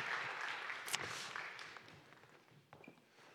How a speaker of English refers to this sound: And if they're feeling any trepidation, this is a great time to kind of give the kids a big round of applause so that they feel good.